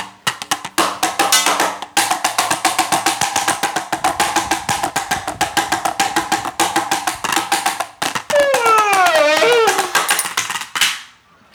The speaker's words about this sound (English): That was adorable. Two spoons on a glass tabletop.